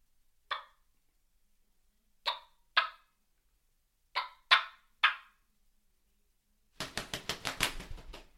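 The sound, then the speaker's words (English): Imitated wingbeats of two turkeys flying down: six separate sharp, papery whooshes at uneven intervals, then a quick flurry of about eight rapid flaps at the end. No voices. “So so I replicated two turkeys flying down right there, and that's kind of – but for me, I like this one better.”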